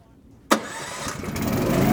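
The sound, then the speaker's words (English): A petrol-driven vacuum pump engine mounted on the back of a truck cranks and catches with a sharp onset, then settles into a steady, loud mechanical running hum with a rising rumble, as a worker starts it to pump out a toilet through a 20-metre hose. “I noticed he had a petrol-driven vacuum pump, which was mounted on the back of his truck.”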